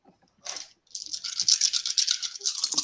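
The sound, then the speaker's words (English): Dice rattle in a cup as they are rolled for a dexterity and athletics check, with a short shake, a pause, then a longer burst of rapid clattering that ends in a few scattered clicks. “You tell those dice.”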